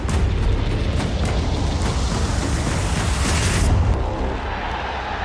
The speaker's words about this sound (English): The long, long wait is over. A Wembley roar to hail England's history makers into the final of a major tournament for the first time in 55 years.